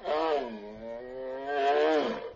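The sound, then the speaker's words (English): A single drawn-out bear roar lasting over two seconds, loud and strongly tonal, sagging lower in pitch through the middle before swelling again and breaking off. No talking. “I am a bear.”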